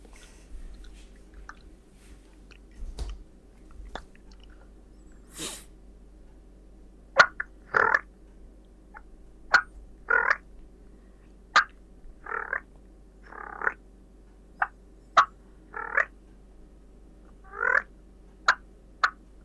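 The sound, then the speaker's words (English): A turkey purr made on a diaphragm call: a series of short, rolling, fluttery bursts, fairly high-pitched and irregularly spaced, with sharp clicks between them and no talking. “Well, that's because I practice I'll give you one of my purrs right now if I can muscle one up.”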